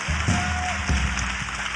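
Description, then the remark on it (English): An audience at a worship service claps steadily and loudly throughout, a dense continuous wash of applause, with a low musical drone and a briefly held tone underneath. “Keep clapping and keep celebrating.”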